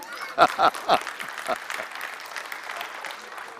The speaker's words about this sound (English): Actually, if I'm going to be really honest, I think that comment deserved an even better clap.